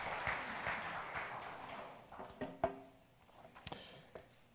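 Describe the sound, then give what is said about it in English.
A church audience claps together to welcome a guest speaker, a dense, steady patter that thins out after a couple of seconds, leaving a few scattered, sharper final claps before it fades. “Let's give him a clap, okay?”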